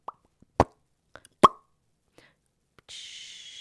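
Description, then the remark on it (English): Two sharp, loud pops, a fake imitation of a cork being pulled from a wine bottle, with a few small clicks between them, followed by a steady, bright hiss meant to suggest wine being poured. “So forgive us unless we want to make a fake pop pour.”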